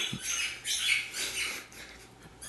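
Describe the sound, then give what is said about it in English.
A dog, Keanu, plays with a squeaky ball toy that squeaks again and again in quick, irregular high-pitched bursts, fairly faint, over a low steady hum, with no one talking. “That's Keanu, everybody, playing with a squeak ball.”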